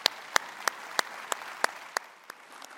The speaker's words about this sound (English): Many of you were here at this time when Church of the Palms began worshiping in this space, and I would like to have you also please stand as we celebrate this day. Give them a big round of applause as well.